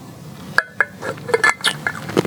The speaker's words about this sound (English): So I'm going to take a sip of this water, then I'm going to pray, and then we're going to get into it.